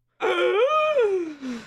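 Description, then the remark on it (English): A single dramatic, voiced gasp from one person, as the character Swifty, drawn out for over a second with the pitch rising and then sliding down into a moan-like tail. It is fairly loud. “Swifty gasps.”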